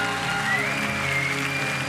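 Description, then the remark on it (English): A large church audience claps loudly and steadily with mixed shouts of praise to Jesus, a dense, continuous wash of applause, with a sustained high tone ringing through it. “Somebody who's thankful for a second chance, would you give Jesus just the best hand clap and shout of praise that you got?”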